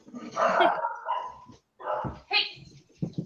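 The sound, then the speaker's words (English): A dog barks a few times in short, loud bursts, with brief pauses between them and a person's voice faintly mixed in; it is one of five dogs being dog-sat. “…'s dog sitting right now.”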